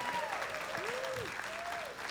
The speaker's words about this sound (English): We applaud you. We're so proud of you.